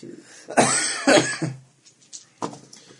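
Two loud, harsh coughs close to the microphone in quick succession, followed by a few softer coughs and throat-clearing sounds trailing off over the next couple of seconds.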